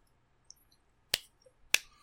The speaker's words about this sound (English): Yep. Just gonna slow clap here.